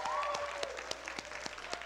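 An audience claps steadily for a pastor, a dense wash of many hands with sharper individual claps popping out at an even pace, plus a faint whistle-like tone early on.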